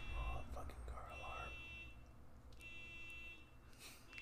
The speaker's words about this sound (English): Oh, fucking car alarm. God damn it. That happens every day.